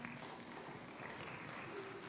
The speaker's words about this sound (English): This is the word of God. Go ahead and clap.